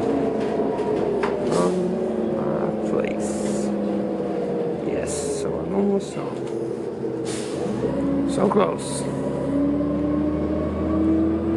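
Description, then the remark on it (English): Steady engine drone and road rumble from inside a moving local bus, route 303, boarded after a train ride to Oceanside, with hissing bursts like air brakes or doors and shifting engine pitch; a person speaks briefly over the noise. “Almost 20 minutes late, I ran from, got the train in Oceanside, ran over to the local bus, 303, and 30 seconds later the bus left, so that's what I'm on right now.”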